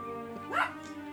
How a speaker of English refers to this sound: Wait, I think I hear the goblin dog barking.